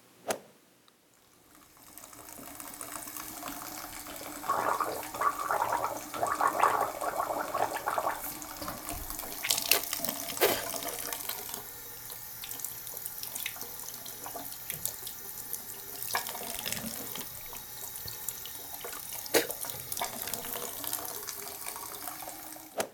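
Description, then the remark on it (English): Someone gargling salt water, a continuous wet bubbling and sloshing that runs steadily for about twenty seconds with a few louder surges, and no talking. “That was actually me gargling salt water, which I did a lot during the days when my throat was really raw and scratchy.”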